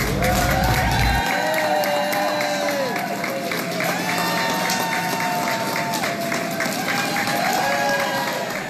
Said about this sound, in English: I joined them bright and early one Saturday morning as they arrived at Bradley International Airport, presidential style, in a cavalcade headed by state police to crowds of people waiting to cheer them on.